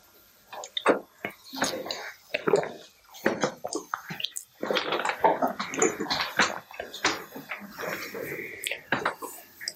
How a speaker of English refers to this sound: Sorry, I need another sip of water.